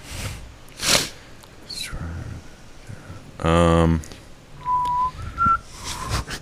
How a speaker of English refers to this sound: I can't whistle because I'm laughing so hard.